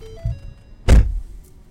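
A car door slams shut with a loud thud, preceded by a soft shuffle of someone climbing back into the car and followed by a brief faint click in the quiet cabin; the car is stopped in front of a house with a chain link fence on a street in North Miami.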